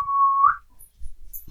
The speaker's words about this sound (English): Do you hear a little whistle?